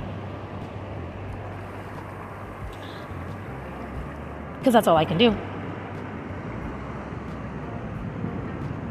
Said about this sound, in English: So I'm here on the ocean, grounding myself, recording this episode.